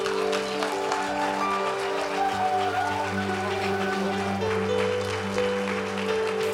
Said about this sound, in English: Open your heart. Give him the best hand clap for the Lord, won't you?